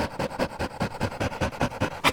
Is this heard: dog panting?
yes